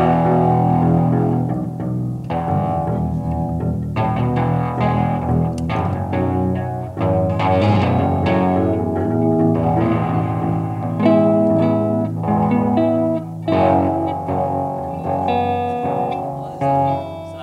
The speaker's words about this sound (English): … adjusting his amp, still very distorted. "Nice little amp," says ….